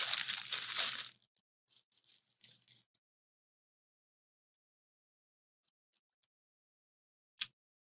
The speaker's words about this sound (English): I'll munch a little bit more.